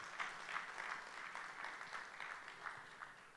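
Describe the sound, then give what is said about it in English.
An audience claps steadily for a few seconds, a dense, continuous patter of many hands at a moderate, even level, with no voices over it. “A big applause for all of you who are sitting at the back.”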